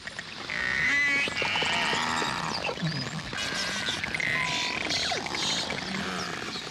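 A dense chorus of beluga whale whistles and chirps, with rising and falling squeals and rapid clicky calls overlapping continuously at a steady, fairly loud level.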